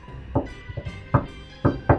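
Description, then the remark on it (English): A secret knock on a door in the classic shave-and-a-haircut, two bits rhythm: a quick run of sharp raps, a pause, then two firm closing knocks, fairly loud. “So you do hear the secret knock”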